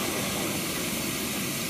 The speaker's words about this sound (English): There's a Jeep rolling up, stopping to make some lunch. Yeah, been on single track for a little while, or was anyway. It's a really nice Jeep. You hear him crossing the creek there.